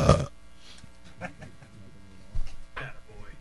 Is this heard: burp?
yes